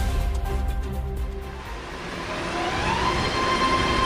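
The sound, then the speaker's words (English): A BART rapid transit train rolls along with a loud, sustained metallic screech of wheels on rails, high whining tones rising over a deep rumble that continues throughout. “The screech of the BART train.”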